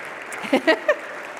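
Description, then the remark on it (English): An audience claps after a children's story time, a steady patter of applause, with a few brief voiced calls or cheers rising over it partway through. “Can you guys give him a round of applause?”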